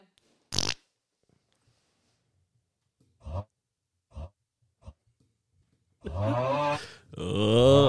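A cartoonish fart sound effect: a sharp initial burst, then three short, spaced-out toots, ending in a long, loud, drawn-out blast that wobbles and groans.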